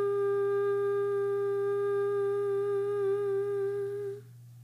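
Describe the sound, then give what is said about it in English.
A single low hummed note, chanted on the note G, is held steady and unwavering for about four seconds, rich with overtones, then trails off into quiet. No other sounds accompany it. “But so we're going to chant hum for 3 minutes with the note G, which is hum, or you can sing hum if that's not too low.”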